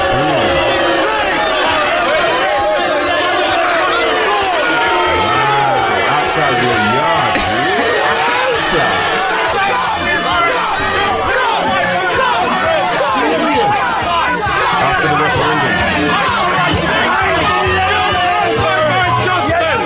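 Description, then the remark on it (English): A large crowd of about 1,000 people chatters and shouts outside a house the day after a referendum was announced, in a loud, continuous wall of overlapping voices, with occasional whoops rising above the steady hubbub for the full twenty seconds. “It was like about 1,000 people outside man's house, and then this.”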